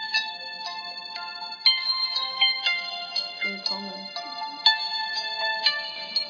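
An old flip phone's daily wake-up alarm ringtone plays a bright, beeping electronic melody of stepped tones, repeating steadily for several seconds at moderate volume, with a brief low murmur beneath it midway.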